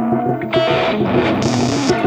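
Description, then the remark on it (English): A heavily distorted, overdriven guitar tone rings out with buzzing harmonics through several overdrive and distortion effects. At the start the player switches between the effects, so its character shifts abruptly in step-like jumps. Loud, with no talking. “I used a few overdrive and distortion effects. And in the beginning I was just switching between those effects.”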